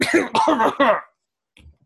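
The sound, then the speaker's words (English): Three loud coughs in a quick burst, followed by a pause and a faint, brief throat sound near the end. No talking. “Oh, sorry. Coughed again.”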